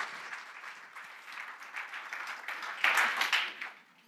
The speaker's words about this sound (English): So please join me in a round of applause welcoming our panel. Thank you.